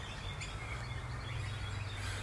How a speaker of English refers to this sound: Listen to those birds.